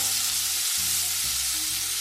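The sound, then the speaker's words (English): Onions fry steadily in a hot pan, starting to turn in color, a loud, continuous crackling hiss with faint low tones underneath and no one talking. “Meanwhile, these onions have been frying for a bit.”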